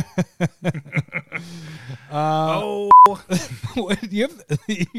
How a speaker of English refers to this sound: That's a beep button.